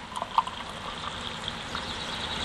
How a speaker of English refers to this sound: Oh, here we go. Nice light pour.